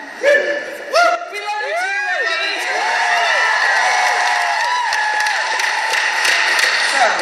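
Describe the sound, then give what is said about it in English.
A crowd breaks into loud, sustained applause and cheering, with rising and falling whoops and shouts over steady clapping that holds at full strength for the whole stretch. “Hold your applause.”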